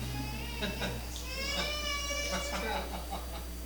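A cat gives a drawn-out, wavering meow lasting a couple of seconds, with a few shorter mewing sounds around it, fairly quiet over a steady low background hum.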